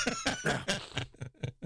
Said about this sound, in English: I cough it all up.